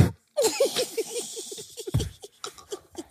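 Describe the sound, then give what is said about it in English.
A voice imitates a fart with a sputtering, rapid series of low buzzing pulses, a brief pause, then a sharp burst and more trailing sputters, fairly loud. “That's why your man love you, cause you can't even fart. That hoe be like this.”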